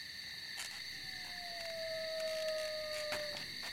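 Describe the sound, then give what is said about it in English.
A single coyote howl, one long thin tone sliding slowly downward for a couple of seconds, rising faintly over a steady, shrill chorus of crickets on a quiet night. “Coyote.”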